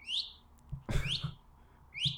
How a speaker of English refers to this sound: And it's just thousands and thousands and thousands constant. Of these little frogs making these little chirping sounds.